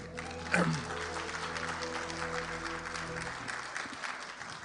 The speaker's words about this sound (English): Emmanuel, God with us. It is so good, but it requires, clap for Jesus, come on.